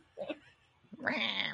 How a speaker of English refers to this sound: It sounds like a cat. I don't know why.